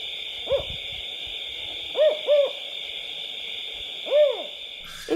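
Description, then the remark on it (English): A California spotted owl hoots in the Sierra Nevada, California, in a short series of clipped, rising-and-falling notes, a single call then a quick pair and another, over a steady high insect drone in an otherwise quiet night. “And when I was in grad school, I was doing some research out in the Sierra Nevada in California on the cutest, cuddliest creature there is, the California spotted owl.”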